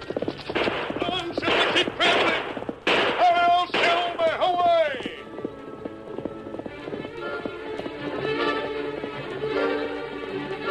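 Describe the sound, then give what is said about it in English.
A horse, Silver, gallops toward and through a campfire, its hoofbeats a quick steady rhythm, while sharp gunshots crack loudly through the first half and a horse whinnies before the hooves carry on alone. “Look at that horse come.”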